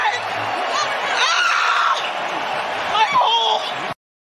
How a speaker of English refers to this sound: The sound of Nia Jax screaming "my hole." You cannot find that on WWE recordings anymore, which I think is hilarious.